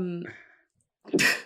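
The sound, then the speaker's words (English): A single loud sneeze: a brief voiced intake, a short pause, then a sharp, hissing burst of breath that cuts off abruptly. “Bless you.”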